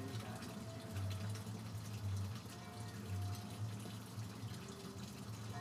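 Water runs and splashes in a steady, continuous rush from a waterfall at Bowtie Cafe, with a low hum underneath and no one speaking.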